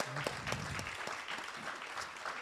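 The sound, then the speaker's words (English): An audience at the Schuyler bookstore in Harrisburg breaks into a steady round of applause for Brandon Flood, the brand new Secretary of the Pennsylvania Board of Pardons: a dense wash of overlapping claps at even loudness throughout, with no talking over it. “But first of all, can we give a round of applause for the brand new Secretary of the Pennsylvania Board of Pardons, Brandon Flood?”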